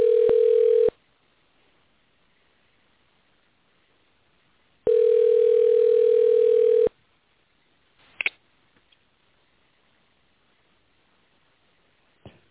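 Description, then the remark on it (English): A steady telephone tone sounds in two long bursts with a pause between, followed by a quick click-like beep of dialing a call back on a cell phone and quiet line hiss, with no one speaking. “I'm just going to call him back on the cell phone, since that actually worked.”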